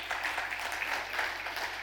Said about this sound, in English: We're doing a great work at Coastal. Let's clap our hands if you believe that.